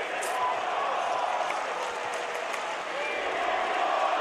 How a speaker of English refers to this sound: And the crowd cheering for Boban. He's not in yet with 4 minutes left.